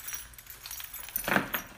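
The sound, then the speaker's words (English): Keys, including a son's key being hung up, jingle and clink together in a short metallic rattle, with a brighter cluster of clinks near the end. Fairly quiet, no talking. “I'm actually going to hang up my son's key as well.”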